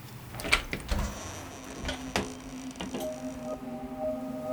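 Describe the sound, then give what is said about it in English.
A door unlocks with a few sharp mechanical clicks, then creaks and scrapes open over a low steady hum, with a faint tone sounding near the end. “The door just unlocked.”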